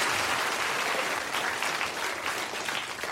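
A steady round of audience applause, dense and continuous clapping from many hands at an even loudness throughout, with no voices standing out above it.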